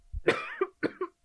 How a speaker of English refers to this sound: it's that smoker's cough.